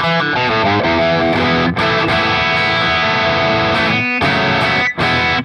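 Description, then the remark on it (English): A Les Paul electric guitar played through a drive pedal switched to its glass side, drive and tone at noon, gives bright, chimey, loud sustained chords with a sparkly high end and light lows, ringing continuously with a few brief breaks between strums. “Removes a lot of the lows. Really sparkly, chimey, high end.”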